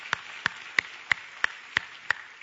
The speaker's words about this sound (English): And we had a lot of people who came down to the altar and were filled with the Holy Spirit. Let's give those who came down a big hand clap of encouragement.